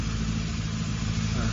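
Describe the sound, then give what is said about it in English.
A car engine idles in gear at traffic lights by roadworks, a steady, low rumble without pause, a constant droning hum with strong low-pitched harmonics that neither rises nor fades, with no other sounds standing out. “Keep the engine running, love. Keep the engine running. That's it. Stay in gear.”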